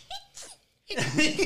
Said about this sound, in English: do got little bitty baby sneezes. So they won't go nowhere. Not little bitty, but they small.